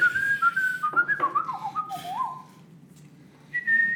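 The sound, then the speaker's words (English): Someone whistles a melody, a bright wavering tune of sliding notes that pauses briefly before a final sustained high note. “To Sweeney Todd. Whistles.”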